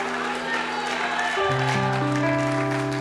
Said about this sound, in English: Come on, put your best hand clap together for God Almighty.